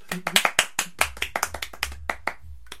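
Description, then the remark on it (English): A small group of people clapping as a shiny cup is presented, a quick scattered burst of handclaps that soon thins out into a few sharp individual claps, no talking over it. “So I think he deserves a clap.”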